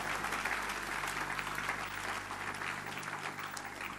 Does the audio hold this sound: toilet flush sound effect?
no